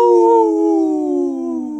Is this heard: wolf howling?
yes